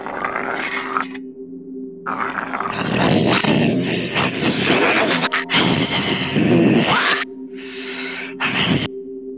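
A harsh, grating screech like nails dragged across a chalkboard, running loud and continuous for about nine seconds with droning tones beneath and rough, scraping surges; no one speaks.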